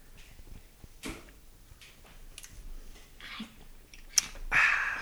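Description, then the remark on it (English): Quiet slurping sips of fizzy A&W root beer come in a few short, breathy bursts, followed by a sharp click and a brief fizzy hiss at the end, with no talking. “All right, let's take a sip.”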